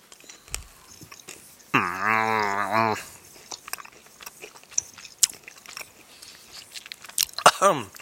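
chewing food

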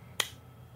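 hand claps

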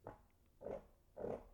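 fart

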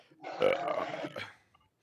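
burp

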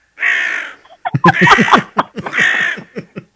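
crow cawing sound effect

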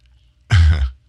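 throat clearing

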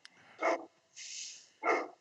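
dog barking

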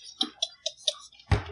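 door being closed

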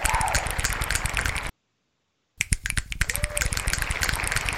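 finger snapping

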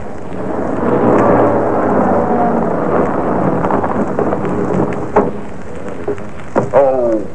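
heavy rain falling

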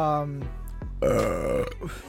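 burp

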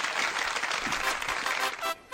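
applause sound effect

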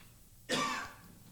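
cough away

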